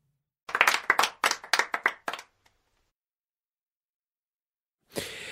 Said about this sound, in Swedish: En applåd tycker jag för det.